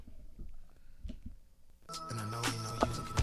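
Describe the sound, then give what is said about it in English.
After a short quiet stretch, a mobile phone ringtone suddenly starts playing, a bright, melodic electronic tune sounding loud, with no one speaking. “Your phone about to blow up.”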